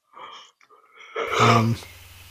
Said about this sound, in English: disagrees with that pick with his big yawn.